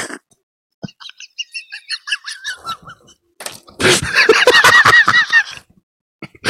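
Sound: bird honking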